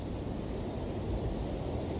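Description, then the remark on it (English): Steady rushing of a waterfall in Las Vegas, a dense continuous roar of falling water with even loudness throughout and no voices or other distinct sounds. “Take this next minute and enjoy the waterfall white noise and the birds as they sing to us.”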